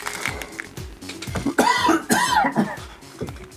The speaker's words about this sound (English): Oh, dear. It's a quite tough one. Make me cough.